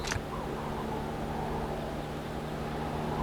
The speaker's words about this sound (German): Ein Hubschrauber.